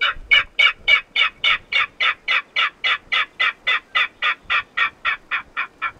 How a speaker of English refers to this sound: Yeah, this is of a king rail, which is pretty rare in the Midwest. This is the king rail call.